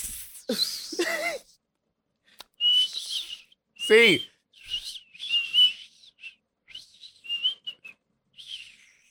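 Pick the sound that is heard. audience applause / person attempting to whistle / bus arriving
person attempting to whistle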